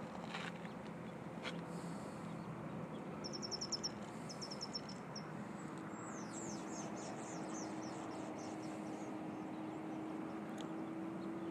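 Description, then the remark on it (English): A steady, low drone of an airplane flying overhead, about to make a drop, its pitch creeping slightly upward, while small birds chirp in quick bursts. “You think that airplane's going to drop some sand?”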